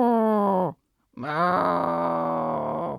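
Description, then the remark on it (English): A person's voice imitates a cow, giving two loud, drawn-out moos: a short low one followed by a pause, then a longer, sustained moo with a rich harmonic tone. “I'm going to give you various moos now. Brace yourself.”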